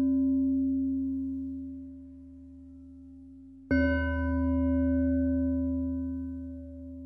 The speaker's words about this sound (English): Continuing with this breath circuit as you breathe in with one chime and out with the next chime.